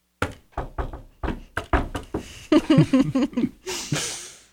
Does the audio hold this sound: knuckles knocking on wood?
yes